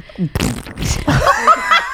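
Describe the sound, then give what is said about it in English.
A voice makes a short, wet, sputtering fart imitation, then breaks into a brief high, wavering laugh-like sound. “What did the fart sound like?”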